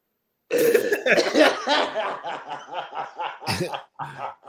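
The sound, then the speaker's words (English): A voice fakes a run of raspy, exaggerated coughs in quick, uneven bursts, almost like snickering, with a sharper hack near the end. “Hit him with that old shit, that cough.”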